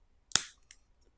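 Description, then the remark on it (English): A protein shake bottle cracks open with one sharp, loud plastic snap that rings off briefly, followed by a faint small click, with no talking. “So let's open this protein shake, which I didn't remember to put in the refrigerator until like an hour ago.”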